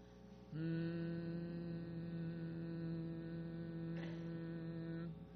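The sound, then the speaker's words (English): A group of voices hums a single steady note in unison for several seconds as a vocal warm-up, with the sound starting abruptly and holding level before stopping. No talking. “What we have just been doing are some exercises for opening our throats. One last one. Hum.”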